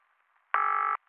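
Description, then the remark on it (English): A single loud burst of telephone ringing from a call placed to the First Joint United Church in Pittsburgh, a steady buzzy tone lasting under half a second, surrounded by near silence with a faint low hum. “I called instead.”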